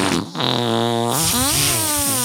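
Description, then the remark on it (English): A buzzy, wet fart noise made by squeezing air through cupped hands, fairly loud, with a steady drone that wobbles and slides in pitch over about two seconds. “You're so proud that you can fart into your hands.”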